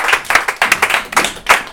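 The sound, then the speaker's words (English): An audience at a live performance bursts into another round of applause, many hands clapping in a dense, rapid patter with bright sharp transients, steady and fairly loud throughout with no voices over it. “So, round of applause again.”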